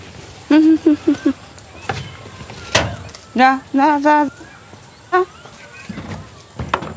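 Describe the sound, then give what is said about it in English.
Cows being herded from the fields back into the house: short, rhythmic bursts of calling voices urge the animals along, with scattered hoof clops and shuffling between the calls. “I need to go and get the cows back into the house.”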